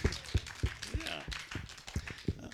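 An audience claps in a steady, even rhythm, sharp beats arriving about three times a second, with voices murmuring underneath.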